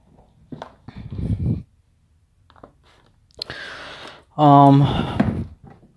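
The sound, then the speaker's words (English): A neighbor's dog whines and cries in high, drawn-out tones, briefly, between stretches of a person talking. The whimpers are moderately loud and rise and fall in pitch. “So she starts crying because she's like, "I can hear you in there.”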